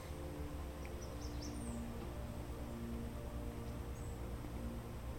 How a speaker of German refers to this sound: Während deiner Rast kannst du die Vogelstimmen hören, die durch die Tannen schallen.